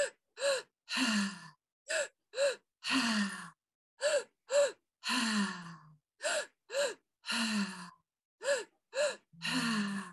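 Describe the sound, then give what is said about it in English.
Deep, rapid open-mouth breathing during a breathing exercise: quick gasping inhales into the belly then chest alternate with longer sighing exhales in a steady, continuous rhythm, about eight or nine breath cycles with no pauses and no talking. “So we're going to breathe in. Belly, chest, release.”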